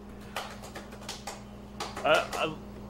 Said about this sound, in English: It's typing.